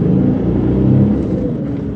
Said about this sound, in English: We were trapped too until the BMW sped off and disappeared into traffic. Then we drove off.